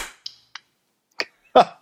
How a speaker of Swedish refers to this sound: Ska vi klappa på tre eller efter tre? På tre.